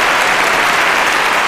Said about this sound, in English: We have a 3-second round of applause. Okay. I was hoping for a little more than that, perhaps.